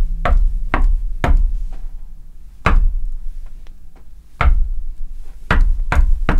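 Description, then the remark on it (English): A sound effect of a passer-by's footsteps on a cobbled street outside: seven loud, hard thuds, three quick ones, then isolated steps with long pauses as the walker stops to peer in the window, before a final pair, over a low background rumble. “And what would happen, I'll have to demonstrate this with a sound effect, is you'd be sitting there and you'd suddenly hear footsteps on the cobbled street outside, and they'd be going...”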